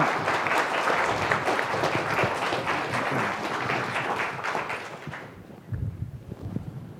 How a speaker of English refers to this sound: But could I ask you, with your applause, to please welcome the Foreign Minister from Iceland, Foreign Minister Sveinsson. Please join me.